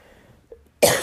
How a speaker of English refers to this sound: I don't know why I'm coughing right now. Excuse me.